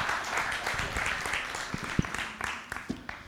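A crowd applauds steadily for a few seconds, a dense wash of many hands clapping together, with a few sharper individual claps standing out near the end.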